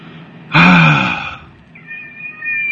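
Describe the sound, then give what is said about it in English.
A cat lets out one loud, drawn-out meow, followed by a softer, thinner high-pitched mew trailing off near the end. “Crazy cat.”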